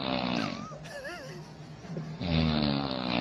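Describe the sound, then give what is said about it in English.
A woman snores in loud, raspy, rumbling breaths, one at the start and another swelling in near the end, while someone swings a toy plane past, making a thin wavering whine that glides up and down in the quieter gap between. “This is a woman who is snoring, and somebody is like swinging a toy plane through the shot.”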